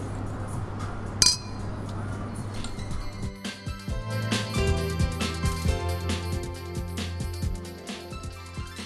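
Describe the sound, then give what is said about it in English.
Glasses of Prosecco clink together once in a toast, a bright, ringing tap near the start, followed by a low steady hum and a scatter of softer knocks and ringing tones. “I'm counting this Prosecco as top quality. This is top quality Prosecco. Only the best mantra.”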